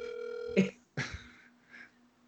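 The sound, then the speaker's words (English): A steady electronic ringback tone from an outgoing phone call holds for about half a second, then cuts off abruptly into a clunk and a few short, muffled bursts as the line seems to pick up. “He gave me his phone number, so maybe I'll call his phone.”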